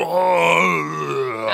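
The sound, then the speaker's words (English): A person voices a drawn-out, groaning scream of agony for a giant, one sustained low tone that wavers slightly and stays loud throughout. “The giant screams in agony.”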